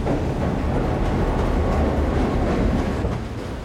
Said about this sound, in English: And then the train started moving.